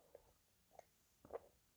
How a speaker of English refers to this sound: I'm just getting a bit of a dry mouth here, so I'm going to have a little sip of my coffee I've just made.